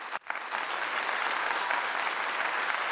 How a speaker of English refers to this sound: let's give a round of applause for Melo for his Hall of Fame career